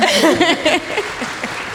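An audience applauds a panelist after she finishes speaking on bias and social justice, a dense, steady patter of many hands clapping that fades slightly toward the end, with a brief voice heard under it at the start.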